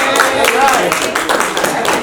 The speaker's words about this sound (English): So I just need everyone to just give me a round of applause. Just say keep going. You got it.